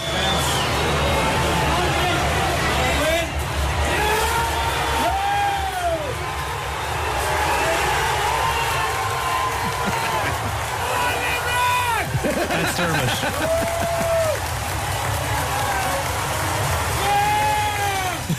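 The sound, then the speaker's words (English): A dense, steady roar of a large stadium crowd cheering at the final whistle of a match won by Limerick, with many voices yelling and shouting over one another in rising and falling wails that keep the din loud throughout. “Here's the moment the whistle went.”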